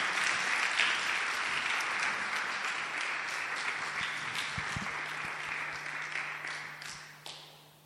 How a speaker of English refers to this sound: Oh, if you are clapping, clap.